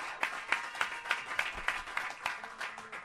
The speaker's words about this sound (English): Paulie is like, deserves a huge round of applause because he does all the behind the scenes stuff here.